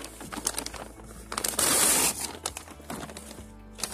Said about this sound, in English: Anyways, so like, I got some paper. This is like these like little paper stuff, and I'm just gonna rip it up.